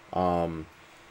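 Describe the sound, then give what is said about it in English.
A single short meow from a male pet cat, fairly loud, lasting about half a second with a steady tonal pitch, then quiet background. “You might be hearing him meowing.”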